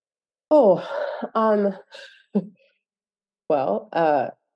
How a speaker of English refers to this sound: Currently talking about this, I'm like breathing very heavily.